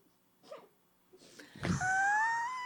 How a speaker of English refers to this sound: Thank you for yawning. I'm so glad I have your so attention.